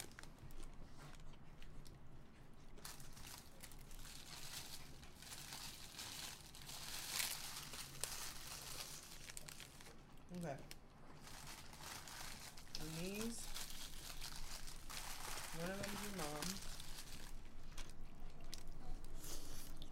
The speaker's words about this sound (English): Now they get to hear us eating.